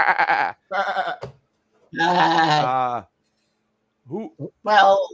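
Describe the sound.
A human voice imitates a goat's bleat: a few wavering, nasal 'meh' calls, one long quavering cry in the middle, loud, with short pauses between.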